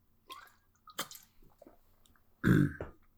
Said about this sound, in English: I need to drink some water.